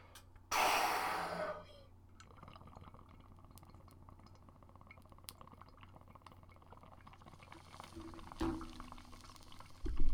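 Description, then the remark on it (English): Someone takes a sharp, bubbling hit of smoke, a loud rushing burst lasting about a second, followed by quiet breathy exhaling and faint shuffling, with a brief louder breath near the end. “But let's smoke this bad boy.”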